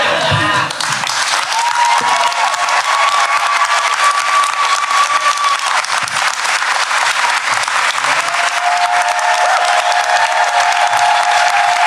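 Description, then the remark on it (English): A large audience applauds loudly and steadily for about twelve seconds for John Hodgman and the actors, the dense clapping joined by cheers and a few whoops and whistles rising above it. “Please give a round of applause to all of our wonderful actors.”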